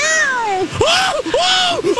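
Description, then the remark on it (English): A person imitates a cat with a few drawn-out, wavering meows, loud, each sliding up and down in pitch like a real cat's cry. “I was a cat.”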